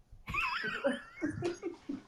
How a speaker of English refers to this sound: Somebody broadcasting the heavy breathing, now we all going to die?